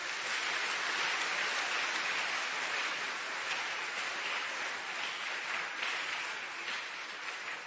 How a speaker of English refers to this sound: Now, give the Lord a wonderful clap offering.